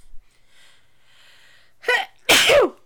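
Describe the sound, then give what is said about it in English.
A loud sneeze: a short sharp intake breath followed by a forceful burst, with a faint hiss of quiet background beforehand and no talking. “Bless you.”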